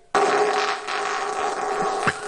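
A single long, loud performance fart by the flatulist Mr. Methane bursts out abruptly and holds for about two seconds as a steady, buzzing blare, with a rough sputter at the end and no talking.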